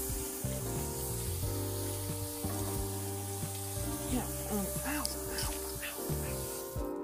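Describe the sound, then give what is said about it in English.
Very hot water runs steadily from a tap in a kitchen with a continuous hiss, while a voice speaks over it and lets out several short pained exclamations. “Really hot water.”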